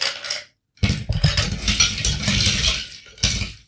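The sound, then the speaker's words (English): Regular ice cubes clatter and rattle into a tall, thin Collins glass in loud bursts, a short scoop, a pause, then a longer stretch of jostling clinks and one final rattle. “Now we've done that bit, you can add your ice.”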